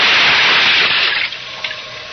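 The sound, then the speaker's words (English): A scuba diver with face mask and air tank dives into deep water off Point Dume: a loud rush of water as he plunges in, quickly easing into softer underwater bubbling with a few scattered pops. No voices, just the churning splash fading down. “Then I tested the free flow of air from my tank and dove.”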